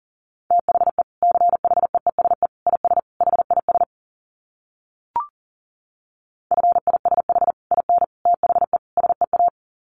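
Fast Morse code at 40 words per minute: a steady mid-pitched tone keyed in quick dots and dashes, two runs of sending separated by a pause with a single sharp click.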